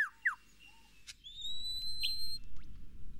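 A lyrebird runs through a medley of other birds' songs, mimicked as a mating call to attract a mate: sharp chirps, rising whistles and long, bright held tones, shifting quickly from one call to the next over a steady low rushing hiss.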